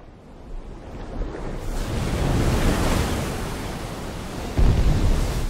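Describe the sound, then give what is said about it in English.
Ocean waves wash and crash against the shore in a steady, rushing roar, swelling midway and breaking again with a deeper surge near the end, with some wind buffeting the microphone. “Like you're in a giant house on the ocean side and you're the only house out there and you just hear the waves in the background.”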